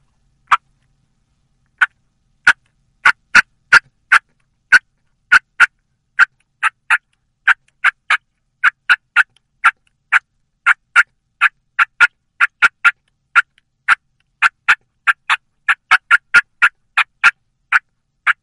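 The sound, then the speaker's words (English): A turkey hunting call mimics an excited hen cutting: sharp, clipped clucks fired in quick, irregular bursts with a few hen yelps mixed in, loud with no voices. “Again, that was a series of cutting of an excited hen, throwing a few yelps in there.”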